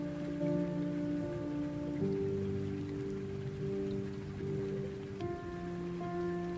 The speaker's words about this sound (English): Sound of the rain, baby.